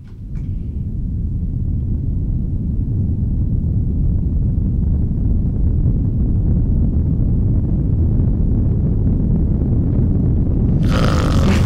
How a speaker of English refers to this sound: Okay, we're going to just play you like a few seconds of it. We don't want you to fall asleep while listening to us. Okay. And this is, by the way, called brown noise.